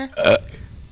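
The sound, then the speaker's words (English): A single loud burp imitating the Rocky theme, with a distinct pitched, tonal quality, lasting under half a second before fading into quiet background noise. “So it's like 4 seconds of the Rocky theme in a burp.”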